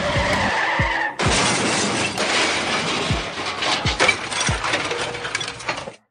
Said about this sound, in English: The airbags explode as a car crashes into theirs.